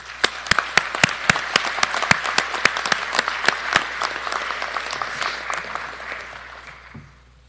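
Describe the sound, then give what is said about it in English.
Steady audience applause at a San Francisco Police Department ceremony, honoring the national anthem singer, the SFPD Color Guard and others: a dense wash of many hands clapping with several sharp, louder individual claps early on, then fading gradually to quiet by the end. “They all deserve a round of applause.”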